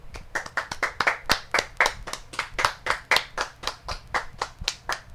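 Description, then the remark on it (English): A slow clap: steady, evenly paced hand clapping from a single source, about twenty crisp claps in a regular rhythm with nothing else heard. “Thanks for your slow clap.”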